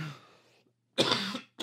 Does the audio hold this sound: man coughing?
yes